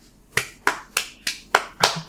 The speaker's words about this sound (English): What's that? What? Why are you clapping?